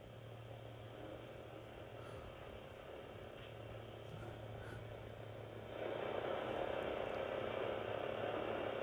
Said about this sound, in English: So this is the Life Signs Pulsar sound.